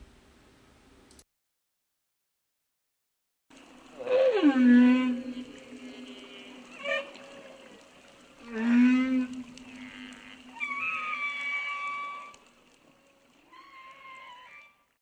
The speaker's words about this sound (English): scientists begin to decode whale speak.